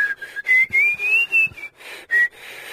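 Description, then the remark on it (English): Someone whistles a wandering, tuneful melody, the clear tone rising and falling in short phrases with brief breaks, alone without any talking. “And what can you do to someone who's whistling all the time?”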